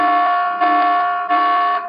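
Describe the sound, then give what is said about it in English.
A loud, harsh alarm blares at a steady pitch, swelling in three repeating pulses over two seconds, with no voices. “As a matter of fact, we're going full on tyranny alert at this point.”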